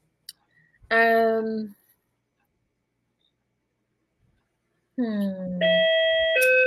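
A doorbell chimes, first one sustained electronic tone, then after a few seconds of quiet a longer multi-note ding-dong melody, fairly loud, with no talking.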